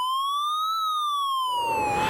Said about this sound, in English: You renamed it, yeah, because it used to be the W1TH1 robot, and you hear this siren go off.